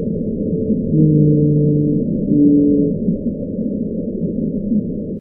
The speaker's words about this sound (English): Whales? Louder than that. The lovelorn call of a lonely blue whale.